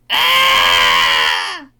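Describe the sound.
A voice imitates the Wilhelm scream: one loud, strained, high-pitched cry held for over a second, then sliding down and cutting off abruptly.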